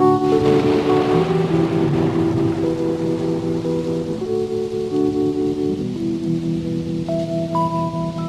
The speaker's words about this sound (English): Thunder, bring in the thunder.